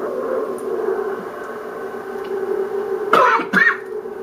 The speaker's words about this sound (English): That was just a cough.